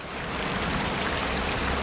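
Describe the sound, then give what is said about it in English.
Mineral spring water flows and gurgles steadily in the town of Borjomi, Georgia, a dense, continuous rushing like a spring or small stream, with no voices over it. “But here in the town of Borjomi, the water is still flowing.”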